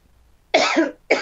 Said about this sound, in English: So, are you okay? Yep. That's just like dry throat. You can't even cough anymore,